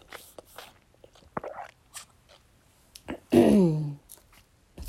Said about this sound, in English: You have to excuse me, my throat is on the dry side, so I will be taking sips throughout.